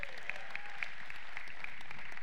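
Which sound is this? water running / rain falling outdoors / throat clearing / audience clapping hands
audience clapping hands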